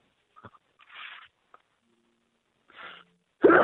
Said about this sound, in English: And hold on, I'm going to sneeze here for a second. God bless you.